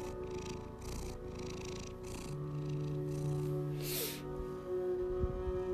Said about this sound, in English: He's a purring machine. He's orange, he's not green. He's a purring machine.